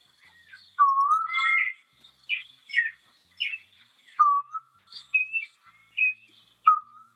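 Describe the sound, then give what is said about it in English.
An eastern koel, also known as the rainbird, gives its whistling call: a run of about eight clear, loud whistled notes, some rising and some falling, repeated at a steady pace with no voices. “Right, okay, here is the eastern coal.”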